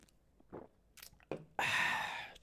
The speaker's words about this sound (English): So I am sipping on some of my favorite brew. It is the Local Buzz.